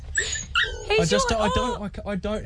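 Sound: dog whimpering and yipping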